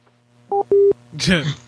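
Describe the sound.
Two short, clear telephone dialing beeps sound in quick succession, the second held slightly longer, and then a voice starts speaking right after them.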